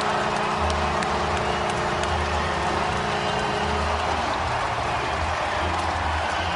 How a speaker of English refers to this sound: Goal number 801 for Alex Ovechkin, tying Gordie Howe. Listen to the crowd.